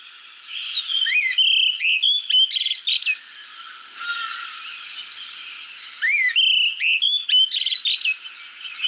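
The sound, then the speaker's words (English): An olive thrush sings clear, warbling phrases with sliding whistles and quick trills, two bursts of song separated by a quieter pause, fairly loud with no voices present. “So now I'm going to play you the olive thrush.”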